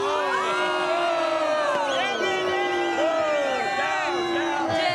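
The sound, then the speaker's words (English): A large crowd cheers and shouts loudly for several seconds after being asked how they feel about Prime Minister Trudeau, a dense continuous roar of many overlapping voices with rising and falling yells, whoops layered on top. “To know from the crowd.”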